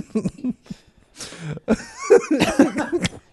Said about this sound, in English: coughing up her damn Diet Coke.